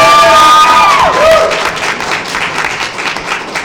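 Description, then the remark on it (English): An audience votes for Scarlet Witch by applauding, bursting into loud applause mixed with whoops and cheers, a high voice swooping up and down at the start, then steady clapping and crowd noise that fades slightly toward the end. “If it's Doctor Strange, applaud.”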